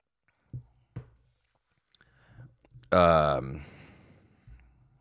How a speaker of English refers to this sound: Sip of coffee.